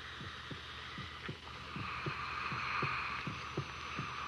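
A heartbeat heard through a stethoscope placed on a creature that has just come alive: steady, low lub-dub thumps repeating about five times, each beat a soft paired pulse over a constant hissing hum, with no voices.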